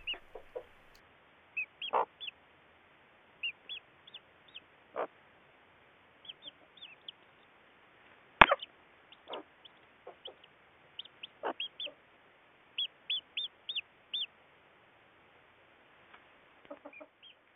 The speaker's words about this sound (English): I know what made me feel good, hearing the soft peeps of day-old chickens who just hatched underneath their mother hen.